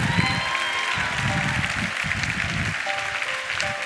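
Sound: audience applause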